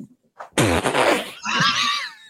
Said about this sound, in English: Did you fart? No, no. Maybe. I'm in a hot box. I hope I didn't.